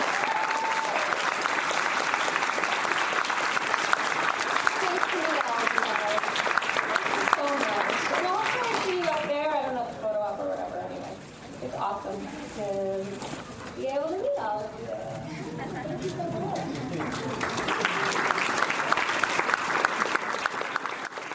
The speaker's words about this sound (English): Well, thank you so much. We are so excited to have you here, and we're so excited for your future projects. And everyone, can we just give her like a major round of applause?